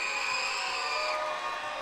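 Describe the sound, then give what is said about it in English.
A crowd of children from Lakewood screams and cheers together in a loud, sustained roar of high-pitched voices, steady throughout with no pauses. “And now for my very own hometown, scream on top of your lungs if you're from Lakewood.”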